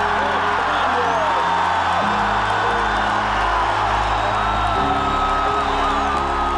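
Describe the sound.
A large crowd at the Iowa Hawkeyes' Kinnick Stadium roars and cheers continuously as fans welcome a man back, with whoops and yells rising above a loud, dense wall of voices that holds steady throughout.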